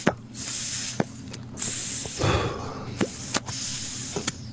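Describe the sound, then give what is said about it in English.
Soft, airy hissing from people smoking on air during a broadcast rises and fades in a few long breathy bursts, with scattered sharp clicks and taps between them and no talking. “I just want to know to the listeners if it annoys you how much we're smoking on the air now.”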